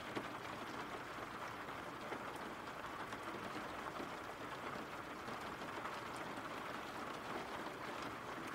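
Steady rain pours down in a continuous, even hiss with dense pattering, holding a constant moderate level throughout with no voices.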